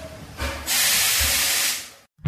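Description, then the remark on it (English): A steam locomotive at the Kempton Steam Museum, Hanworth, lets out a loud, sustained hiss of steam lasting about a second, preceded by a low chuffing rumble and ending abruptly in a brief silence. “Bring a picnic and watch the steam locomotives go by.”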